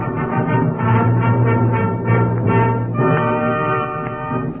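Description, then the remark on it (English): A loud, sustained blast of many trumpets sounding together, a thick brassy chord that holds steadily throughout and shifts to a new pitch partway through, with no voices present. “There was a loud blast as of many trumpets.”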